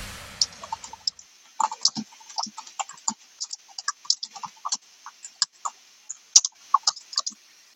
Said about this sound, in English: just for the record, we can hear you typing.